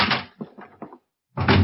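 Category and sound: sound effect, door opening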